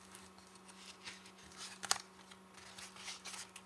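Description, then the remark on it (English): Soft papery rustling of book pages being turned, with one crisp flick partway through, quiet over a faint steady hum, no voices. “Turning pages this way is much harder than it looks.”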